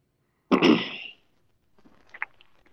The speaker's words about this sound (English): Man, everyone's coughing today. You okay?